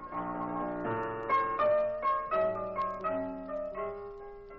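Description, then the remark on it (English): Sammy Page plays piano at the Pink Elephant, heard through the open door of a small back room: a gentle melody, with chords and single notes struck at an unhurried, steady pace, each ringing out and fading before the next. Moderately loud, with no voices. “But the door was open so we could hear Sammy Page at the piano.”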